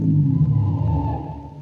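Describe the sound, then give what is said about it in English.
Car brakes are jammed on, screeching to a stop on a lonely stretch of road in a valley with trees growing down to its edge: a steady, fairly low-pitched tonal squeal that holds for about a second and a half before easing off slightly, with no voices. “The stranger seemed asleep, but he stirred as I jammed on the brakes.”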